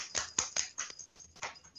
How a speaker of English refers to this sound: Is that your dog scratching itself? Yeah, he's molting season at the moment and everything's covered in fur.